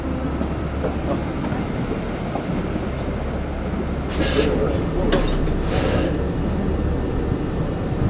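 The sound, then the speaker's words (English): Inside a moving articulated M14 city bus on 14th Street, at the back of its rear section, a steady low engine and road rumble fills the cabin, with a few brief airy hisses or rattles partway through and faint murmuring voices underneath. “Now we're in the back of the back half of the articulated M14 bus.”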